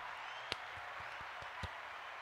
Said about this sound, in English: Yeah. Another applause for you here. Here you go.